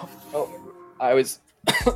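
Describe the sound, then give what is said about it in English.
A person coughs in a few rough, harsh bursts after inhaling from a Cape Godberry legal marijuana cartridge, the fits separated by brief pauses, with low voiced murmuring mixed in at the start. “He always hits it too hard.”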